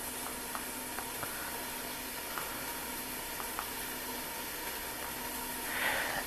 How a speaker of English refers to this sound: So you can hear the pot sizzling.